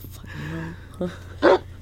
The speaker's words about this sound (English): It, like, it doesn't get old every single time. It's just so funny. And the fact it's a real bark.